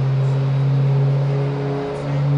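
A racing truck's engine roars loudly and steadily at high revs during a run, its deep droning tone holding strong with a brief dip before surging back, no voices present.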